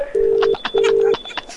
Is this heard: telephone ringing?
yes